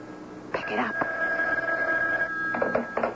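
telephone bell ringing

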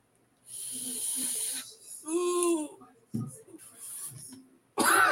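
coughing

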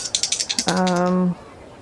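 dice being rolled

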